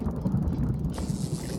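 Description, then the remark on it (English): A bubbling cauldron sound effect: a steady, dense churn of low, irregular pops and gurgles, with a brighter hiss joining partway through. No one speaks. “Are those bubbles I hear?”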